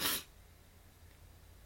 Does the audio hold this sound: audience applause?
no